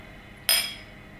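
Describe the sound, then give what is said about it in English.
A single bright clink of whiskey glasses touching in a toast, fairly loud, its high ringing tone fading over about half a second against a quiet background with no talking. “So cheers.”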